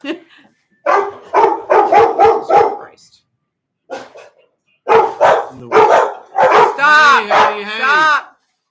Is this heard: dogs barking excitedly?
yes